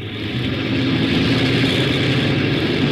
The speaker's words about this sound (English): Ready, Captain? Okay, co-pilot, let's go. Check for takeoff. Wing flaps. Wing flaps. Rudder. Rudder. Port engine 1.